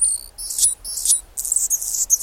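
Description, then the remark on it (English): A male Anna's hummingbird sings a thin, scratchy, very high-pitched song, a run of buzzy squeaks and sputters in short repeated bursts, on a chilly February morning near Seattle with the temperature below 40 degrees, with no voices. “It's a hummingbird, a male Anna's hummingbird, whose throat and crown flash iridescent rose.”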